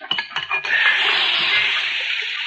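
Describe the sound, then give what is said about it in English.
A few metallic clinks, then a loud, steady hiss as a hot horseshoe is plunged into water, the sizzle holding evenly for about two seconds with no talking. “Now, we'll quench it and see how it fits.”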